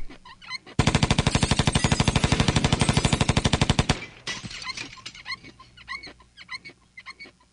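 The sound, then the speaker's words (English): A loud, rapid burst of machine gun fire from a drive-by shooting rattles steadily for about three seconds, then cuts off abruptly, leaving scattered softer, irregular noises and yelps. “It says, if you don't pay up, there will be a drive-by shooting.”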